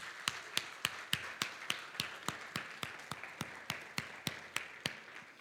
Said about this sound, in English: In fact, let's take 5 seconds, give God another round of applause for last Sunday.